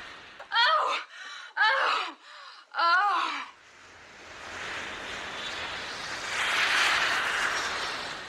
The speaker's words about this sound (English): And then the woman, then the airplane, then the airplane flying.